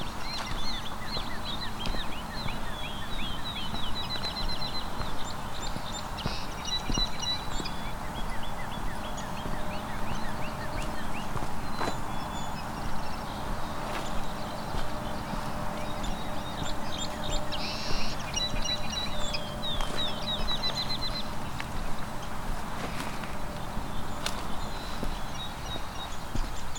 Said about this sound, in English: As you can hear, there's kind of too many birds singing to point them out easily.